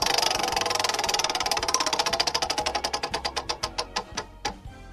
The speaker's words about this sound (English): Let's spin this wheel again.